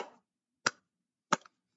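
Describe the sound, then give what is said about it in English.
Three slow hand claps, evenly spaced about two-thirds of a second apart, each a sharp crisp smack with a brief tail. No voices, just silence between the claps. “That's a slow pimp clap right there.”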